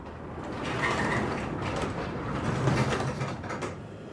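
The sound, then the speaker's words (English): A roller shutter door into a unit at the Hogwood Industrial Estate in Finchampstead, a few miles outside Reading, England, rattles and clanks steadily as it is operated, a continuous metallic grinding of moderate loudness lasting several seconds, with no one speaking. “And we've just headed through the roller shutter door into the unit itself.”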